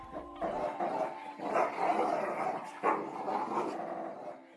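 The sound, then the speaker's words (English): Several dogs tied up by rope snarl and bark aggressively at a boy arriving outside a house, a continuous rough, growling clamor with a few sharper barking bursts and no speech. “The dogs, who were tied up by rope, snarled at him viciously.”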